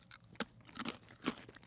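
Crisp crunching as a spelt pretzel is bitten and chewed, with several sharp cracking bites at an uneven pace and no talking.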